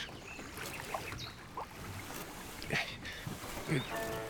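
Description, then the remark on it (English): The oars of a rowing boat dip and splash in water at a steady, unhurried rhythm as a resistance man rows off to Tangen Farm, with soft bursts every second or so over a constant wash of lapping water. “rowed off to Tangen Farm to pass on the news that Reidar Tikken Orkvisle had been arrested by the Nazis.”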